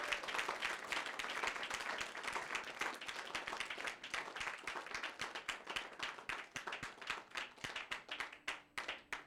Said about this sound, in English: Give a clap offering to Jesus.